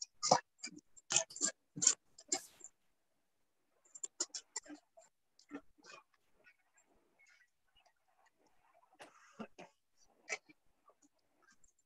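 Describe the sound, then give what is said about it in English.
Scissors snip while trimming, a quick run of crisp, sharp cuts at first, then scattered softer snips and clicks spaced out over the rest of the stretch. “Yeah, I'm back here trimming, I'm at it.”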